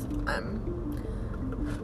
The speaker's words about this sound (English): Sorry, I'm just taking a sip of this water that I got for free at a drive-thru.